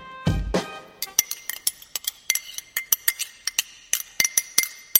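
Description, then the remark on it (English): Teacups and spoons clink repeatedly in quick, irregular taps, bright, after a brief low thud at the start; no voices. “Tea for you and me. Oh, this is tasty.”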